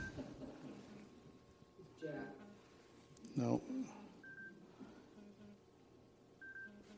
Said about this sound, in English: And I have a phone going off in my pocket.